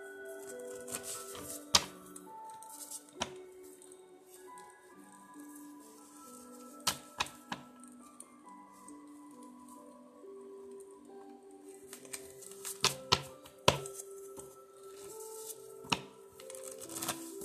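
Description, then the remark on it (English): A deck of jar cards is shuffled for a card reading in short, intermittent bursts of crisp snaps and clicks, over a soft, steady bed of background music with no one talking. “So let me just make sure I shuffle them.”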